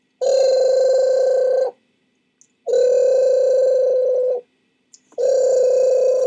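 A telephone rings in three long, even bursts with short silent gaps between them, loud and close, a buzzy electronic trill with no voices present.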